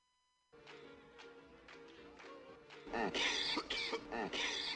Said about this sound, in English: Don't mind the coughing.